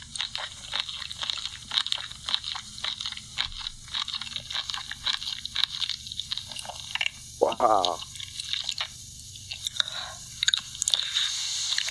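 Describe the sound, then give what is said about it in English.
A woman chews food for a long time: loud chewing with wet, crunchy bites repeating in an irregular rhythm throughout, briefly interrupted by a single short spoken exclamation partway through. “She's still chewing. She goes on to chew for another like 30 seconds. Stop chewing already.”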